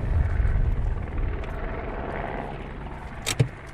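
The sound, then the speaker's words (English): A British Army helicopter drones steadily overhead above an unapproved border road, its low rumble and rotor chop filling the scene, with a brief sharper knock near the end and no voices. “Your car caught in an arc of light from a British Army helicopter on an unapproved road, eyes framed in the rear-view mirror, lost.”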